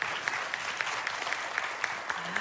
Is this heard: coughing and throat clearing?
no